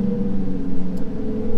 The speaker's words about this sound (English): If you're not watching this on YouTube, you're missing this pretty cool car. You can hear it, but did you see it? And I really want to know if that guy paid extra to get that color.